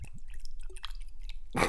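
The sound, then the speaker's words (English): A short, thin pour of a very small amount of whiskey into a glass: a few soft, quiet drips and trickles, ending in a brief louder splash. “Did you ready to pour it? No. Okay, let's do it. 3, 2, 1, then pour, okay?”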